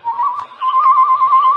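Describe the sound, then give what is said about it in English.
A steady, high whistled tone held for under two seconds with a slight warble, a brief break partway through, mimicking a bird call as a reply to Tonto's signal in The Lone Ranger; no talking over it. “He made that noise like a bird. A reply to Tonto's signal.”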